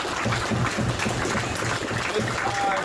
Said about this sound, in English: So thank you guys again. Again, big round of applause for everybody.